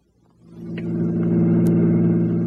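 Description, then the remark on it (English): A car engine rumbles up out of near silence and settles into a steady low drone as a police captain's squad car drives to and pulls up at the Taylor Avenue car station, with no voices. “We'll leave the car here so Dowling won't see it.”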